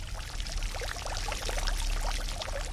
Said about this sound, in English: There are a couple of basins. And these silver basins are filling with water.